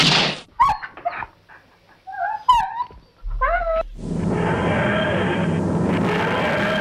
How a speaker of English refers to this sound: Oh, look! Our dog is having puppies! Which one are you thinking of naming Beryl? That one.